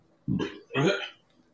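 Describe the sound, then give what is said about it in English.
Two throaty bursts in quick succession, low and rumbling like a burp, the second one longer and rougher, with no talking around them. “Did somebody burp or flush the toilet?”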